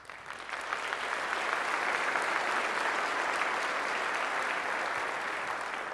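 A crowd applauds steadily for several seconds during a Macomb County government address crediting the finance department for fiscal stability, a dense crackle of many hands clapping that swells quickly at the start and holds at an even, fairly loud level with no talking.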